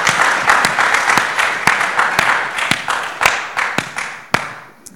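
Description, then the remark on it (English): An audience at a morning church service breaks into applause for the Lord, many hands clapping together in a dense, sustained wash with a few sharp individual claps standing out, fading off near the end. “Can we give a clap to our Lord this morning for good for all time?”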